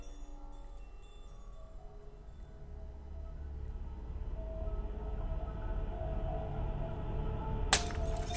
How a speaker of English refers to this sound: Then an earth-shattering crash of glass came from the kitchen downstairs.